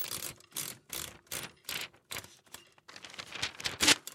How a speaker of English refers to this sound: She crosses the room to my desk, pulling a slip of paper from my typewriter.